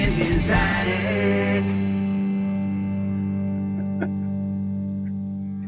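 A short theme jingle of bright, effects-heavy synth chords that strikes loudly at the start, then sustains and slowly fades out. No voices are heard.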